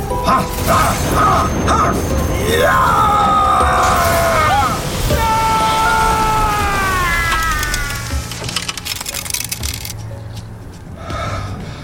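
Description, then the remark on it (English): Loud, crackling lightning bolts strike over and over from a sky that has suddenly turned dark, their electric whine rising and falling above a rumbling roar for several seconds before settling into a softer, sputtering crackle. “Okay, stop the lightning bolts.”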